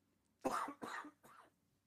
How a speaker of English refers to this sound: Hold on, I got a cough.